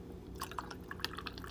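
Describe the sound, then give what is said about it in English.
Creamer being poured into coffee: a short run of soft, wet splashes and irregular clicks over a low background hum, with no one talking. “hold on, I got to add my creamer.”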